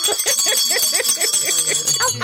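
A bright bell rings continuously with a shimmering, sustained tone, while voices chatter and laugh underneath it throughout.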